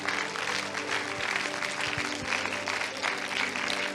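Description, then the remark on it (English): An audience claps their hands in worship of the Lord, a dense, steady wash of many overlapping claps filling the whole stretch at an even, fairly loud level, with a low sustained tone humming underneath. “Let's clap our hands and worship the Lord.”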